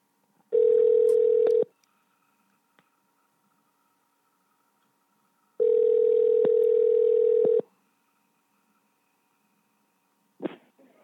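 A call placed to a landline rings through the handset: two long, steady buzzing ring tones separated by a pause, followed by a faint click as the line connects. No talking.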